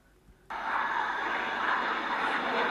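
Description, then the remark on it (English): A loud, steady jet engine roar of a jet plane taking off, starting abruptly after a brief quiet moment and holding at full power. “It's definitely a plane taking off.”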